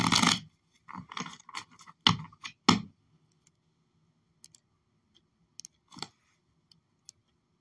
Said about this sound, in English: I just shuffle the deck at this fucking point.